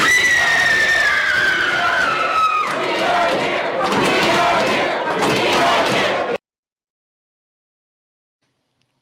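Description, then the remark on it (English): A woman lets out a loud, sustained high-pitched scream as she falls to her knees; it turns ragged and noisy partway through, then cuts off abruptly, leaving a few seconds of silence. “For those listening, she falls to her knees while on that scream. That was a good scream.”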